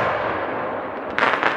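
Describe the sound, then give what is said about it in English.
A crackling peony firework fizzes with a dense, steady sparkle of crackle, then breaks into a brighter flurry of sharp pops near the end. No voices are heard. “And the final option is the crackling peony.”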